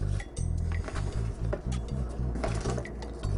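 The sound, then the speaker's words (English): Ingredients, including kale, being added into a blender jar, with scattered clinks, soft rustles and a brief pour of liquid over a steady low hum, moderately loud, with no talking. “So we're just gonna add everything into my blender. I'm gonna put the lighter material on top, the kale.”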